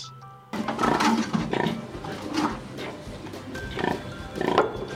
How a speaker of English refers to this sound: God, I just noticed there's pigs in here. Oh my God. I don't know how I fit. Those aren't even my pigs. Who are those?